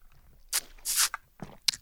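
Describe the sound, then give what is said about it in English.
A few short slurping sips of a latte made with almond milk and a caramel-flavored vegan dairy-free creamer by Nut Pod, each a brief airy burst separated by small pauses, with no talking. “That is my latte of the day. So here's me sipping it.”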